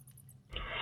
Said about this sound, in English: So as you walk down this next tunnel, you notice the walls are braced with wooden beams. You can hear the sound of rushing water in the distance.